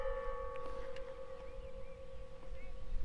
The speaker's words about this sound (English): And as you stand here in these beautiful surroundings, hearing nothing but the wind and the tolling of bells, it's an extraordinarily powerful reminder of how inhumane people can be.